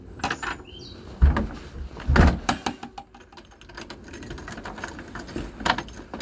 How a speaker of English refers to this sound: When your front door closes and you drive off in your own car or taxi.